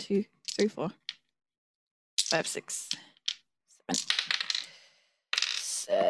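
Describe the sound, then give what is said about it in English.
Several bursts of dice clattering and tumbling across a hard surface, sharp rattling clicks arriving in quick irregular clusters with short pauses between throws, fairly loud. Eight six-sided dice (8d6) are being rolled for fireball damage. “But he's still going to take half of 8d6 if I don't throw my dice on the ground.”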